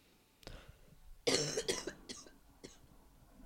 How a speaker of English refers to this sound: Ouch. I'm going to have Liz cut out some of my coughs. Actually, no, I can't. We got to roll right through.